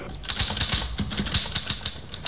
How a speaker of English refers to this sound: Here's a typewriter. Your secretary uses one. Perhaps your son or daughter write their school essays on a machine like this. This one is used to write a letter.